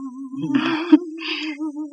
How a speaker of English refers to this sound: This is what she's humming in there.